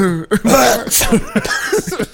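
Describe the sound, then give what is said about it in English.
A voice imitates a cough disguised as a sneeze: several loud, throaty voiced bursts with a sharp breathy burst in the middle, all within a couple of seconds. “Oh, you try to play it off like it's a sneeze, but it's a cough.”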